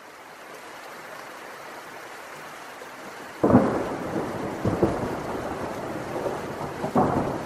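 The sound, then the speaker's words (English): A great thunderstorm at night: steady rain hisses for a few seconds, then a loud crack of thunder breaks in and rolls on, followed by more rumbling bursts over the continuing downpour. No voices are heard. “That night, there was a great storm, and the twisted old tree fell into the forest with a loud thud that sounded like a clap of thunder.”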